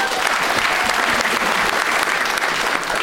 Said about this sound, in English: Round of applause